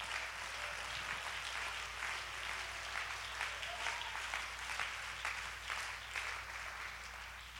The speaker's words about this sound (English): Somebody go ahead and clap your hands and give God all the praise.